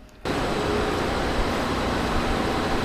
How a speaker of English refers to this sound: This is a paddle dryer. Sludge goes in here. It's heated to about 240 degrees. Comes out, and we they use it. It's a Class A biosolid. They use it for fertilizer.